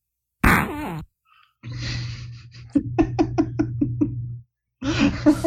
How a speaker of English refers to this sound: It's bottom burp. It's a Christian fart. It's a pastor fart. Oop, bottom burp.